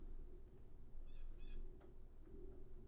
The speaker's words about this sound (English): That bird sounded like it was right there. It was right in the... Yeah. Like it's sitting right above the tree. Right. It might be in the chimney.